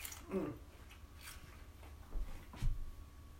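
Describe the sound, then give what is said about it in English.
Quiet mouth sounds of someone chewing food, with a few soft wet bites and crunches scattered over a few seconds against a faint background hum. “can you hear me chewing from here?”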